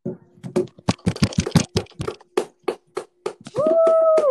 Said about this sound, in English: Let's both give ourselves a big round of applause.